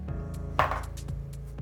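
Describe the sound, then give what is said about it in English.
A die, rolled for hit points during a tabletop role-playing game session, clatters onto a table with one sharp knock, then a couple of soft ticks as it settles, over a steady tonal background hum. “Oh, I have to roll HP.”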